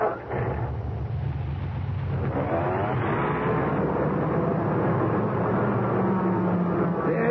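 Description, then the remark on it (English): A car engine rumbles steadily, its low drone rising slightly in pitch as the car is slowly backed out of the shop, with no talking over it. “Well, we gotta give Ben his car. Let me back it out the shop.”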